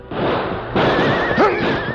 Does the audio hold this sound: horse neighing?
yes